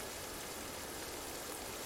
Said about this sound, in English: Do you like rain? What do you do when you wake up and see that it is raining?